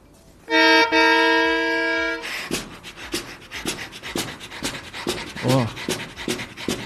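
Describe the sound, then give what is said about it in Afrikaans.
A concertina imitates a steam train: a loud sustained reedy chord like a whistle blast for under two seconds, then steady rhythmic breathy chuffs from the bellows, like a locomotive pulling away. “Soos byvoorbeeld, ek het geleer hoe om te klink soos 'n trein met die konsert.”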